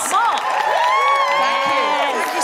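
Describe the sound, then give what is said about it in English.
An audience cheering and whooping loudly to welcome a guest, many overlapping voices rising and falling in sustained excited shouts, steady throughout with no clear speech. “No, more cheering.”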